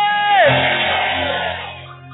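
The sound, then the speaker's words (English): A crowd of voices shouting together in praise to God during worship, in a loud, sustained roar. One voice slides downward early on, and the din eases slightly toward the end. “One of our divine emulations is shouting.”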